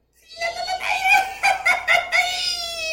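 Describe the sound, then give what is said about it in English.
A single voice lets out a high-pitched Mexican celebratory yell, a sustained, warbling cry with rapid rhythmic pulses that carries on for a couple of seconds without any talking. “So my thing was I said my name, where I'm from, and I did the Mexican yell because I knew how to do it. Can you please do it for the podcast fans?”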